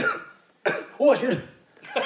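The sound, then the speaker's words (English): A person coughs a couple of times, short harsh bursts with a throaty, voiced quality and brief pauses between them. “I should mention, the reason I now and again I'm coughing, and also sometimes I'm a bit worried as well, because during some of the songs it might sound like I'm laughing.”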